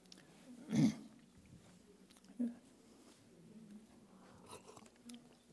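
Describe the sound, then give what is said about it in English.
Someone takes a quick sip of coffee from a cup, a soft slurp followed by a smaller swallow and faint mouth clicks. “I'll give you time to go ahead and do that while I get a sip of coffee.”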